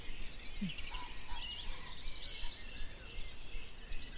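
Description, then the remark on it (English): Soft outdoor birdsong of a dawn chorus: a couple of bright, high chirping phrases stand out over a faint wash of other calls and hiss, with no one speaking. “So there's a wave of dawn chorus going around and around the globe.”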